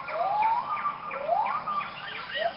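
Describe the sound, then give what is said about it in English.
Siamang gibbon calls: loud, overlapping whooping cries that swoop up and down in pitch like sirens, several voices rising and falling in a continuous, rhythmic chorus with no talking. “And you can hear the Siamangs from like two parking lots over outside the zoo.”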